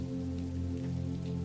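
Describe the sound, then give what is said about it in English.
Steady rain pours onto New York City streets by Central Park West at night, during a storm with lightning, in an even, unbroken hiss, with a low continuous hum running underneath. No voices; the sound stays constant throughout. “Every New Yorker knows what it is like to be caught off guard by the fickle weather.”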